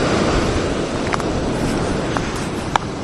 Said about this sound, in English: But Montauk is well alive. That's the ocean, 3 feet away, crashing right in front of me. It's night, I'm going in.